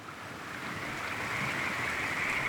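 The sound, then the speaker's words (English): River water laps and washes steadily against a score of river ships docked at a town quay, a continuous rush of water with a faint windy hiss and no voices. “You ride the main street towards the quay where a score of river ships lie docked at the town.”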